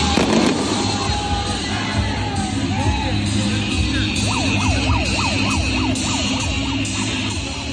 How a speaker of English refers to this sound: Really enjoy the siren at the end. I got to say, it kicks in about 14 seconds. It's like a great guitar solo, that siren right there.